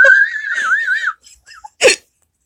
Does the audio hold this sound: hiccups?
yes